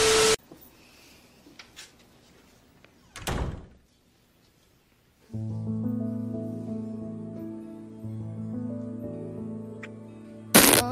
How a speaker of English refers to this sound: Did you hear the fart noise? Yeah, I heard the fart noise.